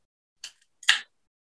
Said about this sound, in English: So this is Henry's Holiday Cheer. So I'm going to just open my can.